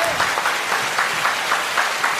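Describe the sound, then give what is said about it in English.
A group claps steadily for a couple of seconds, a dense wash of hand claps with a loose rhythmic pulse running through it, fairly loud and with no talking over it. “Give everybody clap up. Clap it up.”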